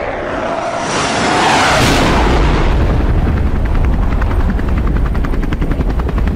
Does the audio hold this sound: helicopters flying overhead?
yes